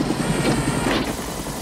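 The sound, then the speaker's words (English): A helicopter passes overhead, its steady rotor thump and engine roar filling the air at a loud, constant level with no voices present. “Of course, a helicopter shows up.”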